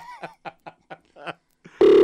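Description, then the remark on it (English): A telephone number being dialed for a call on the Jolla 99 radio show: five or six short, evenly spaced keypad beeps, then a loud, steady tone that cuts in and holds to the end. “Let's dial Sonia.”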